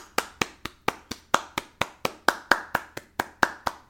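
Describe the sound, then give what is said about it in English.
Polite applause: a single steady run of about sixteen crisp hand claps at a brisk, even rhythm, moderately loud, with no voices. “Customary to end every episode of Pod's Gin, the Key of Springfield with polite applause.”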